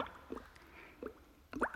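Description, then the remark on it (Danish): Bath water splashes and drips in three short, soft bursts spread across a quiet moment, like small movements sloshing water in a tub as a little boy plays in a bubble bath. No one speaks. “Han har hældt rigeligt af skumbad i vandet fra den der flaske med en kvinde indhyllet i æbler.”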